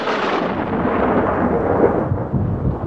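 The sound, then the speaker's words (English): Loud, continuous thunder rumbles through a storm on a wild night, a deep rolling roar that fills the whole stretch without pause, with a hiss of rain beneath it and no voices. “Gee, man, ain't that storm a buster, though. Wild night, all right.”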